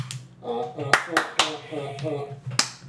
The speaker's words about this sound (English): He's tapping the bottle of the cup to get it to come out.